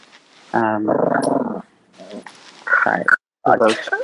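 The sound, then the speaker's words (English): A small pet dog gives a few short, low growls in quick bursts, moderately loud, with brief pauses between them and no one talking over it. “That's a little growl right there.”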